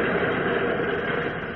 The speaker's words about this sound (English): Unaware that she is under suspicion, young Mary Hennig, accompanied by Jimmy Olsen, is in an express subway train, en route back to Pearlie's office.